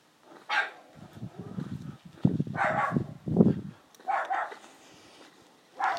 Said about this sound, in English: Oh, that wretched dog again.